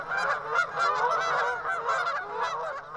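A large flock of Canada geese honking continuously over the Hudson, at about 2,818 feet, many overlapping nasal calls forming a dense, steady, moderately loud clamor with no pauses.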